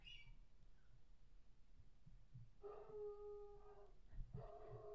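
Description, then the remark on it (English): Two dogs, the household's own dog and another dog, howl outside: one long, steady wail followed by a second rising howl, faint against a low, rumbling background hum with no talking. “Our dog and another dogs are not having fun.”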